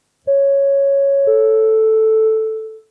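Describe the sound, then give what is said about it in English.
A PA system comes on with a two-note descending chime: a clear, steady electronic tone followed by a slightly lower one. Each note starts with a soft click, and the second fades out. No voices. “So at this point, the PA system crackles on.”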